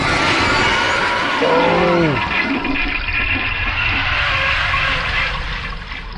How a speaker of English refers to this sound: Oh, we flush them down the toilet.